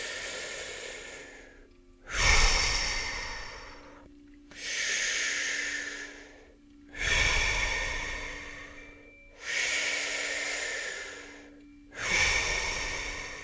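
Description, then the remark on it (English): Five slow, deep breaths in a steady rhythm, each a long airy rush that fades out before the next begins, fairly loud with no talking. “Breathing that green earth energy in. Exhale, letting go. Breathing in.”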